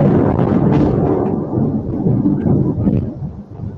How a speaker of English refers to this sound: Obviously, there's that lightning's nuts. Yeah, it's so fucking crazy right now.